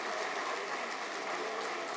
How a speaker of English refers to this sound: Conversations die out as three individuals suddenly walk out onto the stage. And when the crowd realizes who these people are, the guests of honor, they all get onto their feet and begin applauding.